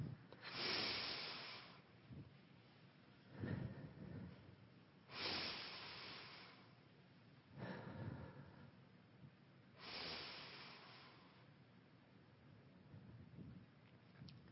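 Five slow, deep breaths drawn in, held and let out during a guided mindful breathing exercise, several airy inhales and exhales in a steady rhythm, fairly soft with quiet gaps between them, no talking.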